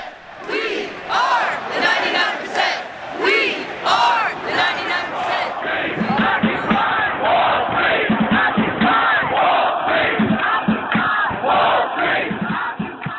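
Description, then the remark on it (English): A large Occupy Wall Street protest crowd in New York City, fall 2011, chants in unison, loud rhythmic shouted phrases repeating steadily over a continuous roar of many voices, sustained throughout without pause. “Those are some sounds from Occupy Wall Street, the social movement that sprang to life in the fall of 2011 in New York City, and which in a few short weeks spread like wildfire to hundreds of cities around the world, from Santiago to Brussels.”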